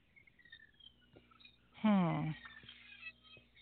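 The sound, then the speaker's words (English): A single loud, drawn-out squeak from a chair, about half a second long and dropping slightly in pitch, stands out against faint background noise. “I got a squeaky chair.”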